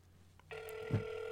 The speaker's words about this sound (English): It's ringing. Oh, wow. It's really ringing. We're going to see if we get anybody.